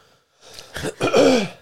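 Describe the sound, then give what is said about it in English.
A distinct throat clearing: a couple of rough, gravelly bursts that build into one louder, raspy clearing, heard on its own with no talking. “I'm sorry, I had to clear my throat.”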